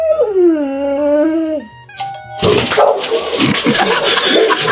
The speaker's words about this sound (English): He lets out an intense and passionate growl.